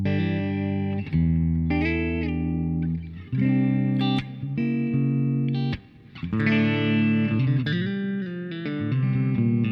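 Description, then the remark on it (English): An electric guitar played through an effects pedal whose enhancer (a compressor and EQ) has its dry/wet control set partly toward dry, its chords ringing out thick and harmonically rich with a lightly enhanced, processed tone, loud with brief pauses between phrases. “We can make the dry wet control more to dry. Ooh, just partially enhanced.”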